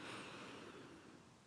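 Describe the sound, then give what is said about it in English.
A single slow, deep breath drawn in, a soft airy rush that holds steady for over a second before easing slightly, quiet with no talking. “Deep breath in.”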